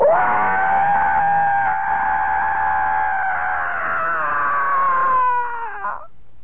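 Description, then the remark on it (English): A voice imitates a long, sustained scream heard from behind a frosted glass door, like a horror-movie scream: one continuous loud high-pitched wail holding steady for about six seconds before wavering and dropping off at the end, with no talking over it. “I heard this fantastic scream.”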